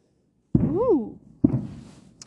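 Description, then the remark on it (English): Two heavy firework booms land about a second apart, each a sudden deep thud trailing off into a rumbling decay, with a voice letting out a rising exclamation after the first blast. “I thought that was cannon fire.”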